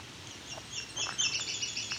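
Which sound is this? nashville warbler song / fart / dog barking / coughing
nashville warbler song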